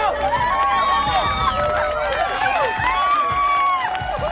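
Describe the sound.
A crowd sound effect added to a soccer game video with only a few people present and no one in the stands: a steady roar of many overlapping voices, shouts and cheers, loud and continuous, with swooping whoops rising above the babble.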